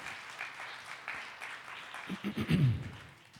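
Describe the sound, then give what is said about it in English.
A crowd gives God a round of applause, clapping in a dense, steady wash that swells louder toward the end, with a few lower bursts of cheering or voices mixed in before it fades. “Yes, give God a round of applause.”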